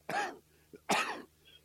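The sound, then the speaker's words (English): Two harsh coughs separated by a brief pause with a small throaty catch between them, the second slightly longer. No one speaks. “If I'm not coughing, I'm sorry.”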